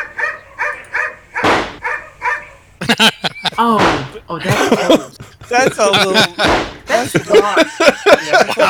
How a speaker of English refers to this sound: I just looked up dog barking and gunshots. So it wasn't hard.